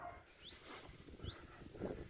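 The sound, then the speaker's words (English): Faint, muffled dog cries from far off in the still morning air: a couple of thin, rising whimpers or yelps over a low, murky background rumble, with no voices. “But if you listen really closely, you can hear the muffled cries of dogs in the distance.”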